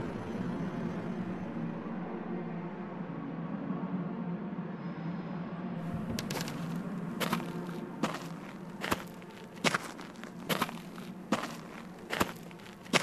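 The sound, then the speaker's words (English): Footsteps crunch steadily across hard compacted earth, about nine or ten even, thudding paces in a regular walking rhythm, starting partway through after a stretch of steady low background rumble and hiss. “This is hard compacted earth. Now we go on to much lighter gravel.”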